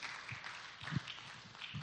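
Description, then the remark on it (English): A church audience claps together in steady, dense applause that fills the short stretch, fairly even in loudness, with no one speaking over it. “Come on, give the Lord a good round of applause.”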